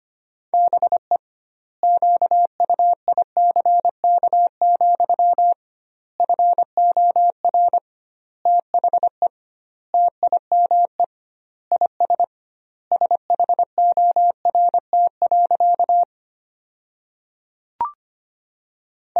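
A steady, mid-pitched Morse code tone keys out sentences from the top 500 words at 25 words per minute with doubled word spacing, rapid dots and dashes in bursts with short gaps between words, then falls silent near the end apart from a brief click.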